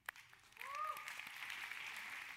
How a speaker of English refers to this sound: And not only are we applauding you, we're actually applauding everyone else because everyone's a winner.